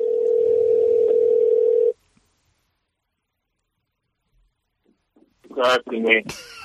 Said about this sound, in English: Is it ringing? I don't hear it.